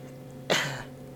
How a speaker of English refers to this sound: What the fuck kind of cough was that? What the fuck kind of cough was that?